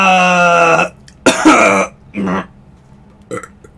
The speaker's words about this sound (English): burps a little and goes